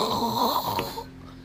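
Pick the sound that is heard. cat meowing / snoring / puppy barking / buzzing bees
snoring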